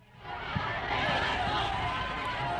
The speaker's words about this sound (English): Okay, that doesn't sound angry, but that's what it's called. It's called Angry Crowd.